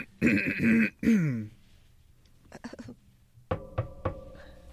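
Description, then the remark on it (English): Several sharp knocks on a metal door ring out with a resonant clang, coming after a brief vocal sound like a throat clearing and a few softer taps. “Housekeeping. A metal door.”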